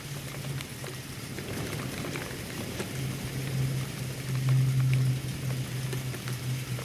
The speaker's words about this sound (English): The snow turned to hail, bouncing off the metal gates around his shelter.